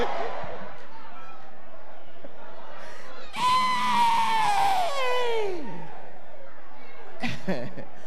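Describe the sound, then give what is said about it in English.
A crowd of people bursts into a loud, drawn-out shout that rises and then slides downward over a couple of seconds, with murmuring voices before it and a brief outburst near the end. “Why are we shouting?”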